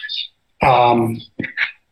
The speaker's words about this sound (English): Hold on one second. I hear birds. Baby, we can hear that. The speaker.